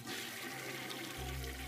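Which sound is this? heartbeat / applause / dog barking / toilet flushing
toilet flushing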